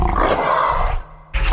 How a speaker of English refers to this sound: Lions, they roar.